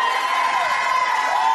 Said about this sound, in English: Oh, don't stop shouting.